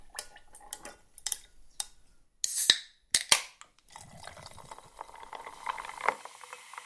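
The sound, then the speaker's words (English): A few sharp clinks of glass and bottle, then a steady pour of fizzy ginger ale into a glass with gin and ice, the bubbly hiss running on for several seconds. “Right, yeah, pour a little bit of that.”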